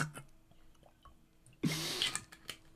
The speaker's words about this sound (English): Let me drink some water.